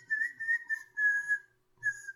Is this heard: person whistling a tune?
yes